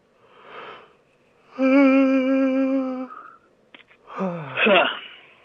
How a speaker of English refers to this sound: We yawned at the same time.